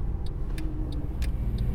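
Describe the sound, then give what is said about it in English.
A Mercedes SLS AMG sports car drives at Goodwood with a steady, loud low engine and road rumble, while a light ticking clicks at a regular pace over the top. “Drives Goodwood in an SLS AMG”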